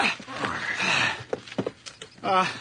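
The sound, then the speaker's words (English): A horse hitched to a cart shifts, with scattered clops and harness rattles, then a short snorting whinny at the end; faint voices murmur underneath. “Horse is all hooked up. Up you go.”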